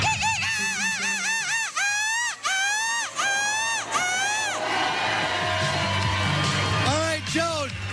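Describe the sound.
A person repeatedly imitates a seagull's screech with a series of loud, rising-and-falling squawks in a seagull-screeching contest, as a crowd cheers and whoops in the background.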